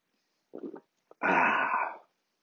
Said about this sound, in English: And before I get to your questions, I'm going to take a quick sip of my coffee.